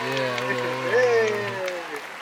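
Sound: applause sound effect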